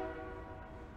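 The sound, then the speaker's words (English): A train horn blares in a steady, sustained tone over the low rumble of a passing train, loud throughout the short stretch. “Why does it sound like a train is going by? Because it is a train.”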